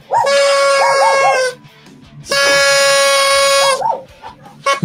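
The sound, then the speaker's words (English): Dogs howl in two long, loud, drawn-out wails, each rising and wavering at the start, separated by a short pause. No one speaks. “Oh, you got the dogs going.”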